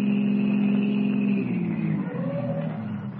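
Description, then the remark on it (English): A car engine hums steadily as the car turns off the Conway Turnpike, then its low drone drops in pitch and eases off as the vehicle slows and idles to a stop on a well-hidden wagon road, moderately loud. “the car carrying Duke Renard and his two henchmen, Curly and Spud, turns off the Conway Turnpike and comes to a stop on a well-hidden wagon road.”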